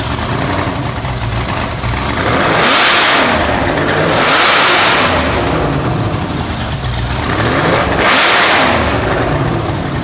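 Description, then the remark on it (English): Larry Miller's car is fired up: its engine rumbles steadily, punctuated by three loud, surging revs a few seconds apart, each swelling and then settling back into a throaty idle. No one speaks. “All right, but we'll play the clip of Larry firing it up.”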